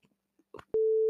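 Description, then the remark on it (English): A few faint, clipped bits of voice give way to a loud censor bleep: one steady, pure mid-pitched tone that cuts in abruptly and holds unbroken to the end. “Now I got to bleep that out.”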